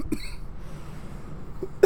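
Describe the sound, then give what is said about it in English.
Two sharp coughs, one at the very start and another near the end, separated by a stretch of quiet low background rumble with no talking. “Keep talking. Oh, yeah, you can keep talking. Coughing.”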